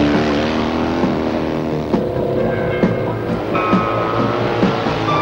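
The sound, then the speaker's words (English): A big motorbike engine roars steadily, its throaty drone holding loud throughout with slight shifts in pitch as it revs, and no one speaking. “I mean, a big bike. You've got all power, man.”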